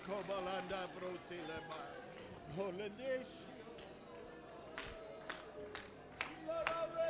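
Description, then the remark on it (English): An audience claps to the Lord in praise in scattered, sharp bursts that grow more noticeable toward the end, mixed under a loud, sustained voice and crowd sounds. “Let's clap, everybody. Clap now to the Lord.”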